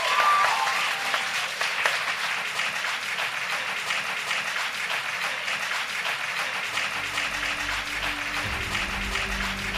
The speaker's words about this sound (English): Crowd goes wild with applause and cheers.